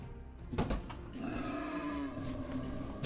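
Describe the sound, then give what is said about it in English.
An angry boar grunts loudly, a harsh snorting burst early on followed by a drawn-out, rasping growl that carries through to the end, with no talking. “Angry pig. Pig noises. Yay, pig noises.”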